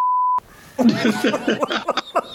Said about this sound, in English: Although I will say this and get ready for the beep button.